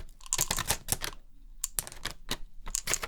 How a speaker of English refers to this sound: These, I propose it's easier to just pour them in, so if you tell me when.